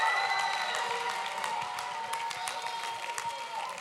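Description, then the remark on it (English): An audience at an evening church service claps steadily and gives a mighty shout unto the Lord, a dense, continuous wash of applause with raised voices and sustained cheering tones running through it at a fairly even level. “If you know that's why God brought you here tonight, clap your hands one more time and give a mighty shout unto the Lord of the harvest.”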